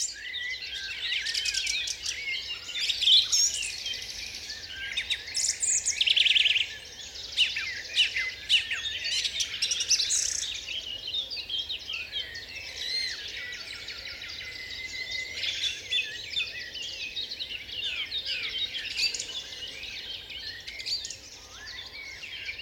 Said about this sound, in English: I mean, I've been fortunate to travel the world, but during that particular month, you can keep your Serengeti, you can keep your rainforest. For me, it's definitely the UK and the Dawn Chorus in the UK.